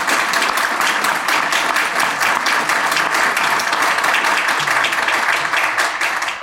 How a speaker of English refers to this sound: So please join me in a round of applause for these incredible panelists.